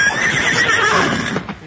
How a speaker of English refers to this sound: Hey, whose horses are those? One is mine. The others belong to my friends. Doggone good horse flesh. Doggone good horse flesh.